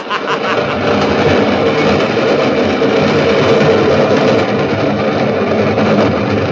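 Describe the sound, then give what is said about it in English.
A steady, loud mechanical roar fills the whole stretch, like the 410 train rumbling past, with dense clattering noise that holds at an even level throughout. “Yes, I was waiting for the 410 train to pass through.”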